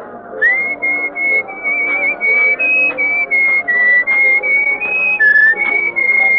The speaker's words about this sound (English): Well, you were whistling our tune, so I thought you were expecting me.